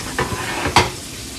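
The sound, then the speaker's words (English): Chicken coated in seasoned flour frying in a pan, cooked 3 minutes per side, a steady crackling sizzle throughout, broken by two brief louder scraping or clattering bursts from a utensil. No one speaks. “All right, so the chicken has had the chance to cook on 3 minutes per side.”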